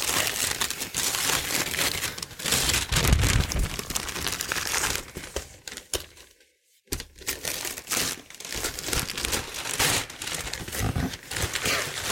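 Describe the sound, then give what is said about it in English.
Loud crinkling and ripping of Christmas wrapping paper printed with stormtroopers as a gift is torn open, continuing in bursts of rustling and tearing with a brief pause midway before the crackling resumes. “And I'm assuming there's no more wrapping paper under this. This is the last line of defense.”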